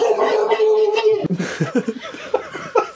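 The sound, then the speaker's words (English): A voice imitates the horrific gobble of a giant, shadowy monster turkey: a sustained, warbling vocal tone, then a rapid, rough burble of choppy pulses that ends the call. It is loud, with no words. “It is just this giant, shadowy, terrifying bird, and it makes a horrific gobbling sound.”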